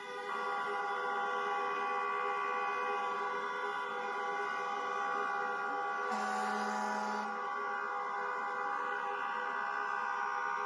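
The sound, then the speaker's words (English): A dense, unbroken wall of car horns blares as hundreds of drivers honk in protest at the mayor in front of Gracie Mansion, many overlapping tones holding steady, with one lower horn briefly joining partway through. No voices. “They showed up in front of Gracie Mansion, hundreds of drivers with their horns, and they sat out and honked their fucking horns at the mayor.”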